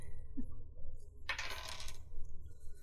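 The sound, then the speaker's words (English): A die is dropped and clatters briefly across a hard tabletop during a tabletop role-playing game, a bright rattle lasting under a second over a low, steady background rumble. “There goes another dice.”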